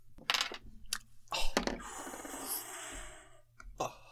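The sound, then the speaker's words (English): Dice rattle and clatter, a few sharp knocks followed by a longer tumbling roll across a hard surface, then a final couple of clicks as they settle, landing on a 4. No one speaks. “So roll those dice.”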